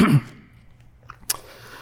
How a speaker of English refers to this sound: One of those moments where I feel like I'm on the verge of coughing.